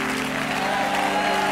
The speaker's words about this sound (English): You clap your hands unto the Lord Why don't you just add a little shout of triumph to it?